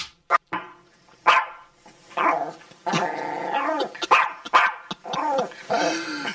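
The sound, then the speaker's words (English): A small terrier growls and snarls in a worked-up, continuous tussle, broken by short sharp barks and yips. Fairly loud, with no talking. “Sounds like a terrier's got hold of someone's trouser leg and won't let go.”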